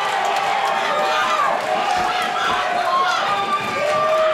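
A large wrestling crowd roars loudly and continuously after Johnny Ruckus is sent through a table onto thumbtacks, a dense, sustained wall of cheering and shouting voices that holds steady for the full few seconds without letting up.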